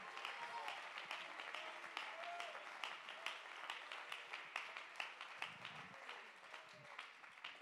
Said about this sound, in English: Clap your hands and give God the praise. Come on, you witnesses of the truth. Let's clap our hands and give the praise to God.